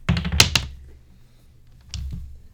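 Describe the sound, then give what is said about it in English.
Dice clatter across a table in a quick burst of sharp clicks and knocks, then settle, followed by a second, softer rattle about a second and a half later. Fairly loud. “He doesn't appear to be fiddling with the dice of any, okay. or anyway. All right, that's good. Just go ahead and roll.”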